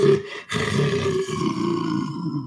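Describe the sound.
A person imitates a lion roar by voicing into a metal waste bin, the technique used for the lion roars in Lion King, producing a loud, sustained, rumbling growl with a hollow metallic ring, briefly breaking before continuing and trailing off.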